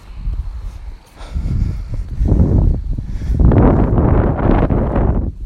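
Wind buffets a microphone outdoors while someone walks up a hill, in low, rumbling gusts that swell and fade, growing stronger and more sustained toward the end, with no voices present.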